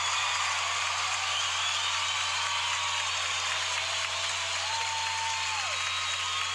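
Steady applause after a cast's dramatic reading of a Christmas poem, a dense, even wash of many hands clapping at a constant level, with a low hum underneath and no voices.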